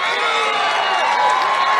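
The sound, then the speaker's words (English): A rally crowd in Florence, Arizona cheers loudly and steadily, a dense wash of many voices with shouts and whoops rising out of it, sustained without a break for the couple of seconds heard. “Now, I just want to jump in here because while they're cheering, I'm looking over his shoulder at the video I'm watching, Florence, Arizona,”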